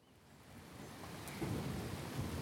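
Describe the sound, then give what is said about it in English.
Light rain patters steadily outdoors, a soft continuous hiss with a low rumble building slightly underneath. No voices are present. “A light rain falls outside.”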